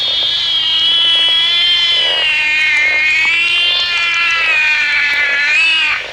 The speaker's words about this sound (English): But it's the fact that why would you want to show a skinless cat? And it's the meowing, too. It's meows the whole time. It's like, meow, meow.